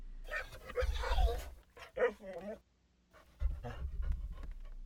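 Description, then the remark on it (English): A pet dog kept as a guard dog pants in quick, breathy bursts, pausing briefly after a short whiny vocal sound, then panting again over a low background rumble. “But, yeah, I got this fuzzy bastard as a guard dog, and, well.”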